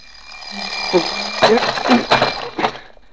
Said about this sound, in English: The alarm clock broke it up just when it was getting good.